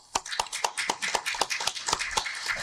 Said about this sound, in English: So who wants to come up and tell us, you know, what do they do on LinkedIn? Clap it up.